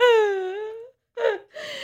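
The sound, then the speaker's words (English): A goat screams in a long, wavering, human-like wail, then lets out two shorter, strained bleats after a brief pause. The cries are loud and harmonically rich with no talking over them. “Okay, so there's a story behind the screaming goat.”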